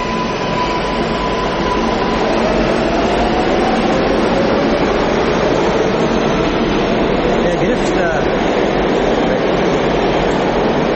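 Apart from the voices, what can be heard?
subway train running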